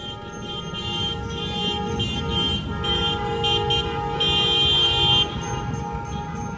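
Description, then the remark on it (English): Many car horns honk continuously and overlapping in a protest caravan of cars and motorcycles downtown on May 1, calling for a mass rent strike: sustained tones layered over a steady rumble of traffic, loud, with bursts swelling near the end. “That was a long caravan with the cars, with the people and motorcycles”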